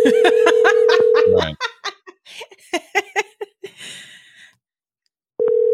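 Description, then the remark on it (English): A steady electronic phone ringing tone plays for over a second, then several people burst into laughter and giggles before the tone starts again at the end. “Speaking of clown, let's call a clown.”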